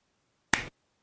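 A single sharp hand clap rings out once, a brief bright percussive burst in otherwise near silence, with no voices.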